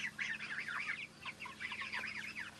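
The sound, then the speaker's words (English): A crowded flock of 5-week-old pasture-raised chickens clucking and cheeping in a bottomless mobile shed on grass at Amamore in the Gympie region, many overlapping calls forming a steady, busy chorus over a low constant hum. “So how old are these chickens”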